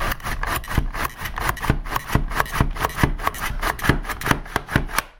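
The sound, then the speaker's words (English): The last of five potatoes is sliced on a slicer that drops the slices into a drawer, in quick, steady strokes, each a crisp rasping swipe repeating roughly three times a second. No one speaks. “Okay, I'm on the last potato, so I thought about stopping it, but this goes so fast.”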